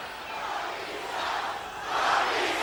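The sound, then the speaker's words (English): A large capacity crowd cheers and roars continuously, a dense wall of voices swelling louder toward the end with no single speaker standing out. “You can hear the response from this capacity crowd.”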